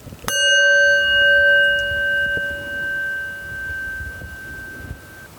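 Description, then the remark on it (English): A single meditation chime is struck once more at the start of a 4-7-8 breathing meditation and rings out clearly, its bright tone slowly decaying over several seconds with no talking. “We're going to do that one again.”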